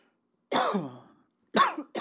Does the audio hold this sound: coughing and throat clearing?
yes